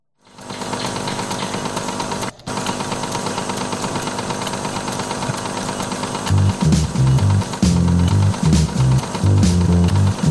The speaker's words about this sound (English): So here's the automatic sleep on an iBook Duo 230 with the one that with the clamshell. The one that looked like IKEA furniture.